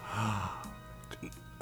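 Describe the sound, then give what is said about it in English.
A single loud, drawn-in gasp of surprise, breathy, followed by a brief quiet stretch and a short breathy burst at the end. “First big gasp.”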